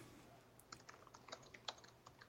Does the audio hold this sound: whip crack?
no